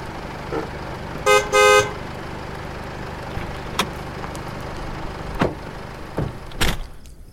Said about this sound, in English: Hold on. Is that a car pulling up right now?